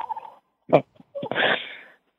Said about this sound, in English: So what is happening in the background? I'm curious. Chickens. Chickens? How many chickens are? Chickens, some dandelion leaves. 11. 11? That's a good number.